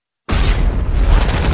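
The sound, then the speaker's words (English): In an action film trailer, after a brief silence, loud gunfire erupts suddenly: a dense, booming barrage with deep low-end rumble that stays intense throughout, a gunfire exchange with suspects on a highway. “let's watch that trailer for Hancock”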